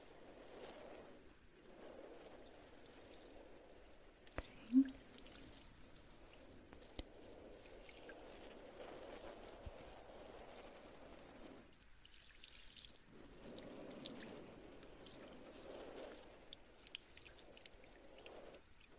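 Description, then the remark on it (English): A steady stream of water pours from a faucet, running continuously with a brief pause near the end before flowing again, moderately loud, with a small clink partway through. “Turn on the faucet.”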